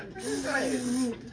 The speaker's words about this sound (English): I'm gonna spray that engine a little bit. Like that.